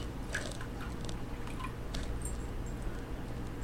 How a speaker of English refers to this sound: Now I'm going to fill up the little basin or bowl, if you will, with the water. And I'm using a measuring cup just because it's easier.